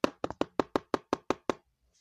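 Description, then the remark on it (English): A rapid series of about nine hard, hollow thumps as someone bangs on a tabletop in anger, fairly loud and evenly spaced, each with a quick decay, before the banging stops into silence. “I tried this, but I ended up starting banging on my table.”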